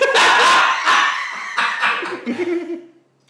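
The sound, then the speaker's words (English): A pub dog barks and yips loudly several times in quick, uneven bursts, the yaps tapering off into quieter whimpering sounds toward the end. “The pub dog.”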